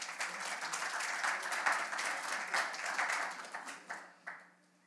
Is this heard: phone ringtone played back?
no